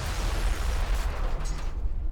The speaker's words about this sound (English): Sammy heard the explosion from inside the club. When he ran out, he saw what was left of Frankie DeCicco smoldering on the street.